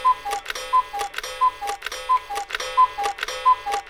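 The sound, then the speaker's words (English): A cuckoo clock ticks steadily and briskly, each tick crisp and evenly spaced, with a faint two-note tonal chime woven through the rhythm; no voices. “The cuckoo's role as a seasonal marker of time may have suggested its use in timekeeping devices, but probably the simplicity of its call, which would lend itself to easy reproduction via pipes and bellows, was another factor.”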